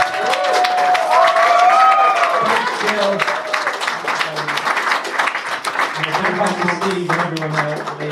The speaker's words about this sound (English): So much to the band. A big round of applause to the band and the BIA.